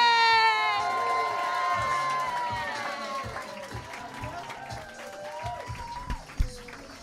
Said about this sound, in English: Start clapping right now. Louder. Keep it going